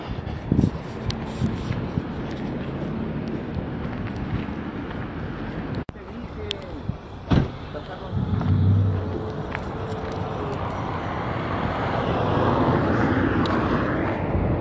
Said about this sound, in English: Okay, I'm out of the store. There's a lot of traffic right now. There's a lot of traffic. It was never like this before, but obviously a lot of people have moved in.